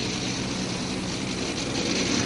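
A steady, loud airplane engine drone fills the whole stretch, a constant low rumble with a broad hiss on top, like sitting inside a cabin during flight. No one speaks.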